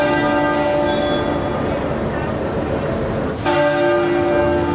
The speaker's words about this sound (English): The bells at Westminster Abbey rang out 96 times today in tribute to the Queen.